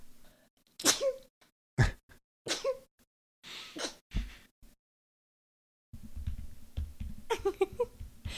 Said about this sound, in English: Lastly, I'm going to sneeze.